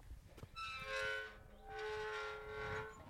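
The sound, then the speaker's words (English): A door hinge squeaks in two long, drawn-out groans, a whining tone that swells, fades briefly, then swells again, with a faint rumble underneath and no voices. “I think we have this season's hinge noise.”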